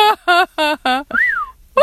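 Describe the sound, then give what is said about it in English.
A person whistles a single short, clear note that rises and then falls, fairly loud, right after a quick run of voiced, laugh-like bursts, with voice returning at the end. “I like your whistle.”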